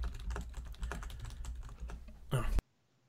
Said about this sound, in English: I'm going to mute my mic so you don't hear the typing.